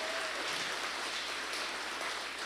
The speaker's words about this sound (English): Can we give a really big, loud applause to our online community, please? Loud so they can hear us.